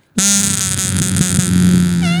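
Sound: imitated fart noise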